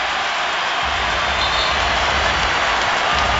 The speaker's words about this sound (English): And a rousing ovation. The crowd, some of them standing for former Raptor Bismack Biyombo.